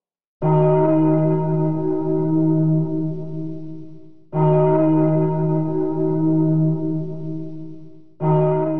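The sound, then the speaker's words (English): A heavy church bell in a tower, rung by pulling a thick, heavy rope, tolls three times at slow, even intervals, each deep, hollow strike ringing out loudly and humming on until the next blow lands. “It was difficult to pull the thick, heavy rope without help, and when the bells rang out, they sounded terrible and hollow.”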